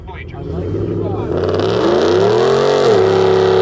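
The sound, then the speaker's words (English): A car doing a burnout, its tires sprayed with ether: the engine revs hard and climbs in pitch, holding a loud, rising roar with harmonic whine as the tires spin, over a constant noisy wash of sound. “Well, this guy's going to ensure a burnout.”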